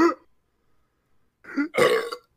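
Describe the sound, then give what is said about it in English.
A loud burp during a burping contest rumbles out in two quick bursts, the second longer and harsher, after a short tail of an earlier belch and a moment of silence. No talking. “our burping contest is better than the burping contest on Bad Blood”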